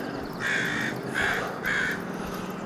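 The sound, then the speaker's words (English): Three harsh crow caws in a steady rhythm, each about half a second long, against a low outdoor background hum, with no talking. “I'm afraid I may have missed the height of Crazy Crow season while I was sick.”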